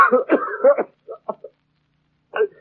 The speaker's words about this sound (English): It's that blasted cough, what does it?